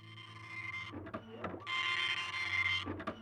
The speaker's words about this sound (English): Down in North Carolina, a printer buzzed. That was the start of a comeback in North Carolina by Ronald Reagan facing Gerald Ford.